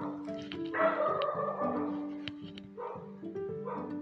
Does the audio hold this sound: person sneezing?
no